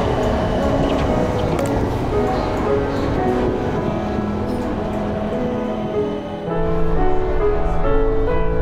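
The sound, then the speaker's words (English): A train rumbles into a station, its steady low mechanical roar building with tonal hums and squeals, the noise swelling louder near the end as it arrives. “Oh, my train is coming.”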